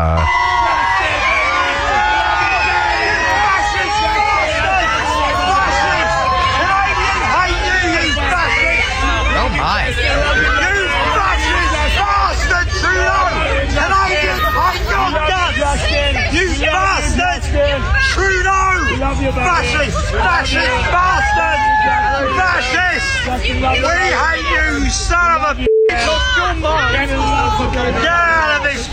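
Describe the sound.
A large, loud crowd cheers and shouts continuously around Trudeau, with dense overlapping voices and individual shouts rising out of the din; a few people heckle and one man screams angrily at him, calling him a fascist.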